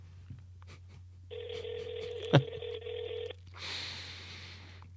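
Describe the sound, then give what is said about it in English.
A single two-second burst of ringback tone from an outgoing phone call to a friend's number, steady and buzzy over a low electrical hum, with a sharp click partway through and a rush of noise afterward. “It's ringing.”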